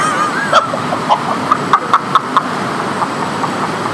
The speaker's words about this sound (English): Full disclosure, there's some birds where we're recording right now. We record in this new, lofty, very fancy place, apparently.